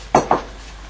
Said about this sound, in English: Every time I hear pages going, I think of Graham. Shuffle, shuffle, shuffle with the pages.